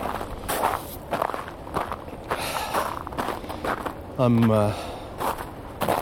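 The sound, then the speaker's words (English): Steady footsteps crunch through snow along the side of an icy track, about two per second, each step a soft gritty crunch. Midway a short, wavering tonal sound cuts in over the walking. “So I'm walking along the side where there's still snow, so I don't fall on my ass.”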